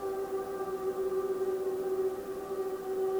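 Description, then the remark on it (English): A chorus of seals wails and hums together in one long, unbroken drone, layered tones holding steady and loud for the whole stretch, with no voices present. “Then all the seals all at once start to wail and hum.”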